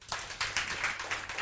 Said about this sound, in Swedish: Få. Det var få som där applåderade.